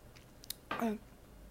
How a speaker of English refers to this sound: So let me take a sip because there's a lot of talking.